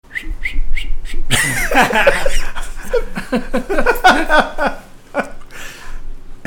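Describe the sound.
A person whistles a few short, clear notes at a concert while a slow song is played, then a busier stretch follows where the whistled tune blends with voices and what sounds like laughter, fairly loud.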